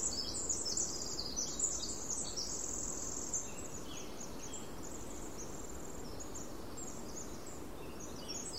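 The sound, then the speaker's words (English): A winter wren's very high-pitched twittering, a fast run of thin trills and chirps, sounds from some way off in a rainforest over a steady rushing background hiss. “This very high-pitched twittering sound that might be coming from 100 feet away.”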